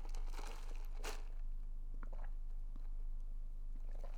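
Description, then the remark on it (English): Someone sips a medium iced coffee with three pumps of French vanilla swirl and oat milk: two short, airy slurping bursts early on, followed by a few faint clicks and rattles, with no talking. “I'm going to take a sip of my coffee now.”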